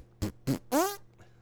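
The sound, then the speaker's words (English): Someone beatboxes mouth fart sounds: two short, punchy percussive bursts followed by a longer, buzzy, sputtering raspberry that rises slightly in pitch, fairly loud, with no talking. “That's a great way to blend in the farts. That's how that started. That sounded like a fart.”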